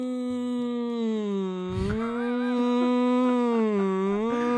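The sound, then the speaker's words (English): A person imitates a wolf howl with one long, steady vocal wail that bends gently in pitch and holds loudly for several seconds, with no talking over it. “you are so Commander Wolf. That is that was well mimicked.”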